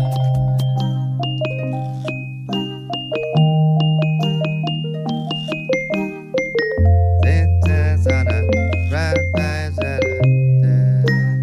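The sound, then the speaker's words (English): A gentle lullaby-style tune played on xylophone, twinkling bells and childlike percussion, with bright struck notes ringing out over a soft sustained low tone, steady and unhurried, with no voices. “It's just xylophones, twinkling bells, and childlike percussion.”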